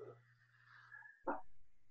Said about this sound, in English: I think Chloe's at the door. My mom's dog. She's trying to scratch in the door, and I'm ignoring her.